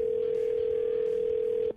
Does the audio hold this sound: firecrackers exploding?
no